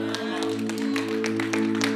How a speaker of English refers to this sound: Some of you are clapping.